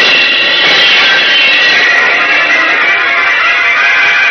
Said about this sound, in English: Diving through the heavy glass wall, Superman rockets out to sea,